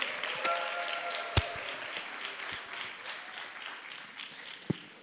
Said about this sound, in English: So can you give wild applause to my panelists this morning as they come on out to share their hearts on this thing called microchurch.